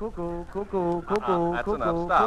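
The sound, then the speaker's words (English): A human voice imitates a cuckoo as an NBC radio time signal for 2 o'clock, giving a quick string of loud two-note "cuck-oo" calls in a steady, repeating rhythm with no background sound. “Where you hear the sound of the cuckoo, it will be exactly 2 o'clock.”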